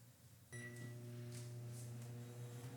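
A microwave oven switches on with a brief high tone, then settles into a steady, droning electrical hum with a low buzz that continues evenly until the end, heating ingredients in 30-second intervals for a coconut caramel recipe. No one speaks.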